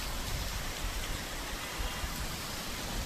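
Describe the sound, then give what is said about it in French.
Heavy rain pours down during a thunderstorm at 4 pm on an early March afternoon in Yaoundé, a steady, dense hiss filling the whole scene with continuous noise and a low rumble of drops hitting surfaces, with no voices present. “Le ciel se vide du lourd fardeau encombrant de sa poitrine.”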